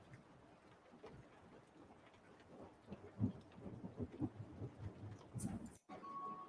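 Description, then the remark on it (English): Low, rolling thunder rumbles beneath a steady hiss of rain, swelling in uneven waves before cutting off abruptly near the end, in a clip from Joe Pera Talks to You. “And did the thunder wake you too?”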